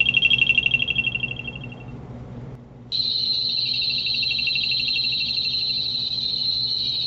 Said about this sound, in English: So, we're going to initiate the main CE5 tones. We'll go through, activate the Mount Shasta tones.